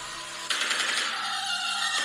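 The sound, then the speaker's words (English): A rapid, dry clattering rattle bursts in suddenly and continues steadily, a large stork with an 8-foot wingspan clattering its beak in a mating call, loud, with no voices over it. “This is the sound it makes when it's doing a mating call.”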